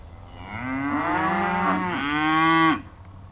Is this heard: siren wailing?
no